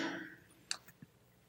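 Bible pages turning as people open their Bibles to Romans chapter 12: a soft papery rustle fading out, then a few brief, crisp flicks spaced unevenly. Faint overall, with no one speaking.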